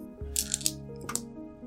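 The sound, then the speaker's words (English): Dice clatter across a table in a quick cluster of sharp clicks, followed by one last click, over a steady, low musical drone. “Well, that's a good roll.”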